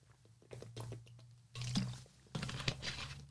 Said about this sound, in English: I don't know. I'm still chugging water.